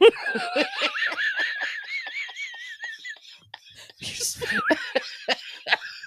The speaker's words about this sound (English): I'm just a fucking wreck. And that cough just made it worse.